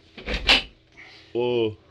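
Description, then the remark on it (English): A door opens: a short, heavy clunk of the latch, then a brief, steady creak as it swings, all within about two seconds. “The door, Hoppy.”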